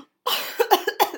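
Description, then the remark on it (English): A sharp intake of breath followed by a quick burst of several harsh coughs in rapid succession, fairly loud and with no talking. “Did you gasp yourself into coughing?”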